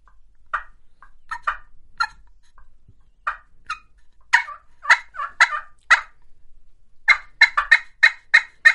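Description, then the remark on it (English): Sharp turkey call clucks from a hand call, made by pushing hard and popping it back, scattered singly at first, then quickening into a rapid run of yelp-like notes toward the end, with no talking. “To cluck, you just basically push hard, okay, and pop it back to you.”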